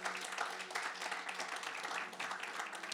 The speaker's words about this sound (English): Come on, can we give God a hand clap?